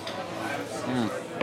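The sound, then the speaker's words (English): Beer glasses clink together once in a toast, a quick, bright tap near the end, after a stretch of low murmur and indistinct voices. “cheers to a good first film with …. Yay. Let's not spill our beer”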